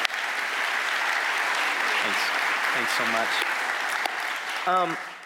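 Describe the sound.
Steady, dense audience applause fills the whole stretch, a broad crackling wash of many hands clapping, with a few brief spoken words rising over it near the end.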